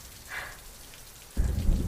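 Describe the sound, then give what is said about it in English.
Steady storm rain hisses throughout, and a deep, rolling rumble of distant thunder swells up in the last half-second, louder than the rain. No voices. “Gilbert lost sight of Hugo while running the errand. He's lost in the storm.”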